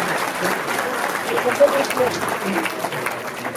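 An audience applauds steadily for several seconds, a dense, even wash of clapping at a fairly loud level with no clear gaps, a few faint voices mixed into the crowd noise.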